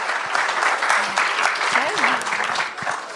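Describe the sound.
A steady round of applause from an audience welcoming a guest, dense rapid clapping filling the whole clip at a fairly even level, with a few faint voices and cheers mixed in.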